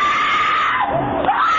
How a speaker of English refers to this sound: Her scream is chilling.